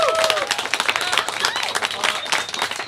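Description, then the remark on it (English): A crowd breaks into dense, steady applause for the cast, many hands clapping at once in a loud, continuous wash, with a few faint voices and cheers threaded through. “Everyone, I want to give a big round of applause, please, get to your guys' self for being here.”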